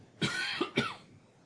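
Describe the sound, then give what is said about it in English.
A pair of quick, throaty coughs in close succession, muffled and somewhat distant as if turned away from the microphone, with no talking. “I actually moved my mouth away from the mic when I cough.”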